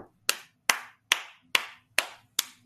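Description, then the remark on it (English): A single person claps six times in a slow, steady rhythm, each sharp clap ringing briefly before the next, with no voices. “And I'm clapping you up, because that take a lot of energy to be toxic all day, every day.”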